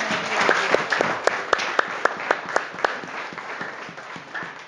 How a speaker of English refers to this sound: Let's clap our hands for the Lord Jesus.